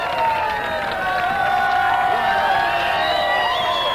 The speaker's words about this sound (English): Well, as you can hear, the crowd went wild for